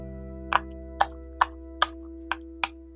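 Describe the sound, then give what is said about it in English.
A pop-it fidget toy being pressed: six crisp, bright little pops at a loose, roughly half-second pace, with no talking and a faint steady hum underneath. “Can you hear the poppet? Crunch.”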